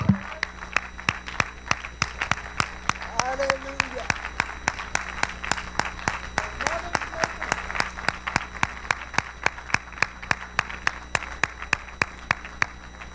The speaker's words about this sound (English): Well, let's clap our hands to the Lord. Let's give the mothers a hand today.